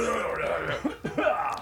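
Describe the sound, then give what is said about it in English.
A few muffled coughs come from off to one side, in short bursts over a steady low background hum. “I'll cut out most of this, but I do like the fact that I can cough to the side and it doesn't pick up the”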